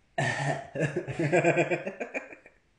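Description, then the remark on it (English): A sharp cough bursts out, then trails into a couple of seconds of breathy, rhythmic laughing sounds before fading to quiet. “Don't cough on people.”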